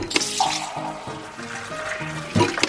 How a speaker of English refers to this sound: The term soda jerk comes from a fountain server needing to pull, or jerk, a small lever in order to pour the soda.